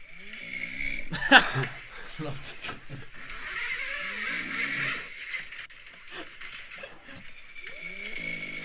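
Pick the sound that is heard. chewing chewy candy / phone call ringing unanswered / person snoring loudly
person snoring loudly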